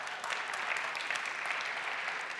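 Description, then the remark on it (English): A church audience applauds steadily, a dense wash of many hands clapping at once with no pauses, sustained and fairly full across the whole stretch. “We can clap for that.”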